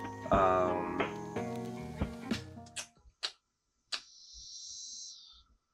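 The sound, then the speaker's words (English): A steady, high-pitched insect drone of cicadas outdoors buzzes for about a second and a half, following a burst of tonal sounds and a few sharp clicks. “I hope y'all can't hear the cicadas.”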